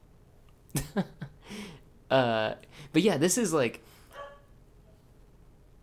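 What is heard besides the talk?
dog barking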